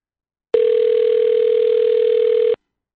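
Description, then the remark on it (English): A single steady electronic telephone ringback tone on an outgoing phone call sounds for about two seconds, even and moderately loud, then cuts off abruptly, with no voices or other sounds around it. “The phone's working.”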